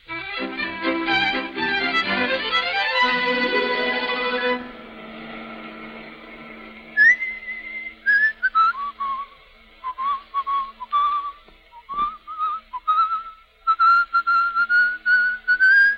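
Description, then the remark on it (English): A man whistles a love song, a slow, wavering tune in clear high notes broken into short phrases, following a few seconds of dense, buzzing harmonic sound at the start. “You've been murdering that thing ever since we left New York.”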